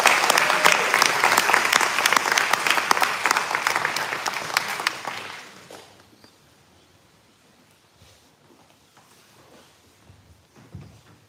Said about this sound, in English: So let's give him a big round of applause as he comes up.